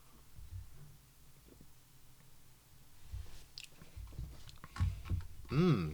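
sipping cold beer

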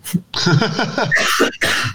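person coughing

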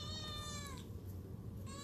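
cat meowing

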